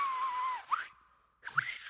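A breathy, airy whistle made with the mouth and tongue alone, no hands, holding a steady tone then sliding up into a sharp chirp, pausing briefly, and returning in a hissy second burst. Fairly quiet, no talking.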